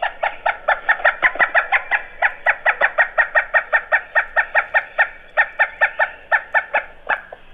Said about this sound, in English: The pileated is like a flicker, only it's louder, as you might expect, because it's so much bigger.